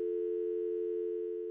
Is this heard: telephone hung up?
yes